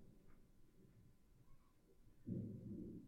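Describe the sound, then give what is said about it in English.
A low rumble of thunder during thunderstorm weather rolls softly in the background, swelling noticeably toward the end before tapering slightly, with no voices present. “That's fucking thunder, dude.”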